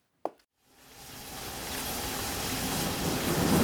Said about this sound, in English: It's starting to rain much harder now, and I just heard thunder.